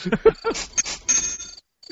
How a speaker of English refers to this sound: Oh, for bad jokes, we have crickets? Oh my God, this is awesome.